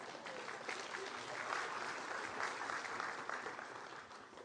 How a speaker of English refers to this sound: You want to give them a round of applause, my assistants this morning.